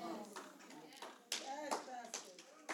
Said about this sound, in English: And that was our brother that clapped.